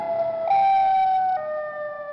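A loud siren alarm sounds alone, holding bright, steady electronic tones that jump between a few distinct pitches across its two seconds, with no voices.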